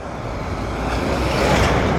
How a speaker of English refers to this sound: That truck was offended that we were too close to it.